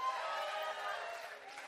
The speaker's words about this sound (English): All right. Okay, got some clapping going on.